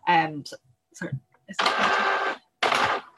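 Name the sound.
office printer running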